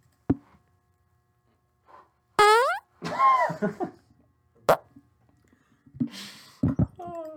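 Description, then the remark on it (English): A balloon squeals in several short bursts as air escapes through its stretched neck, with rising and falling whiny pitches, sharp pops of sound between them, fairly loud. “My farts have to sound like fucking balloons whenever you stretch out the tip. Yep, that was a balloon.”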